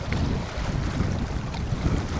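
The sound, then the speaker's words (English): Freshwater waves of a reservoir slosh and lap steadily against huge rocks along the shore on a windy, chilly autumn day, under a constant low rumble of wind buffeting the mic; no voices. “Sound of the freshwater waves of the reservoir”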